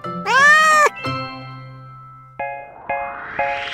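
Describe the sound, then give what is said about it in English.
A single drawn-out cat meow rings out clearly, followed by a bright chime and then three quick ascending dings over a rising shimmer. No one speaks. “His country would be Catmania, and the money would be meows.”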